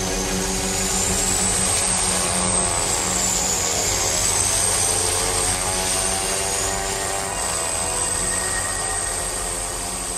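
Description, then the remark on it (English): A small propeller plane's engine drones steadily and loudly throughout while flying over the Arctic, a thick continuous hum with a faint high whine sweeping slightly in pitch, heard from inside the plane, which is jam-packed with people and sledges, with no voices. “He's against your pulks, your sledges, which are all jammed into this little plane as well. And then you kind of go out and you're flying away from civilization and over, you know, over the Arctic.”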